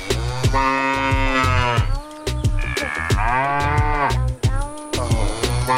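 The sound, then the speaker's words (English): A cow called Ermintrude moos loudly, three long, drawn-out lows in a row with only brief pauses between them and no talking. “It all started with the cowbells, and then I've got you as a friend now.”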